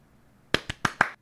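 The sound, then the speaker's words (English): Four quick hand claps in a short, fairly even burst, each a sharp, crisp smack with a brief ring. The third and fourth are the loudest. No one speaks. “You're like, I've never seen anyone clap in a more awkward way before.”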